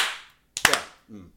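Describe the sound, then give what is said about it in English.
A quick burst of two or three sharp hand claps, crisp and fairly loud, followed by a brief murmur of voice after a hiss fades out. “Can you do the clap for me?”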